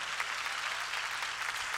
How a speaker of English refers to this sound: Clap your hands, everybody, and praise God.